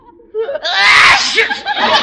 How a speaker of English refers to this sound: What was that? Maybe your dream turkey has an allergy. The turkey just walked out the door. That sneeze came from behind the couch.